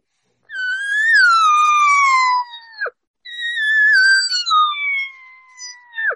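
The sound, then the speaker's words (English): Two long, whiny elk cow regathering mews, imitated on a call to a bull elk, each a high nasal tone sliding slowly downward before breaking off with a quick drop, loud and with no talking. “And I'll give him that whine. I can't tell you how many times I've watched cows do this. To bulls.”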